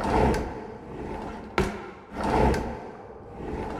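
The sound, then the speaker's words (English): Drawers of a built-in wooden dresser aboard a ship scrape open and shut at night in a few rough sliding strokes, with one sharp slam in the middle, fairly loud, with no voices. “The first night we stayed there on Valentine's Day, we both woke up to what sounded like the drawers of the built-in dresser being opened and slammed shut repeatedly.”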